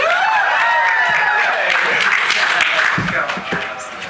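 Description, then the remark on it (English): A crowd cheers and applauds loudly at the welcome to the Experts of Fan Controversy panel, with whoops and shouting voices rising over a dense, steady patter of clapping that carries on throughout and thins slightly toward the end. “And that's when you cheer.”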